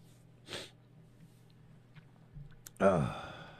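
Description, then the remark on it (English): A short nasal snort, then a louder, longer honking burst of someone blowing their nose, over a low steady hum with no talking. “If I could keep from blowing my nose, that'd be all right.”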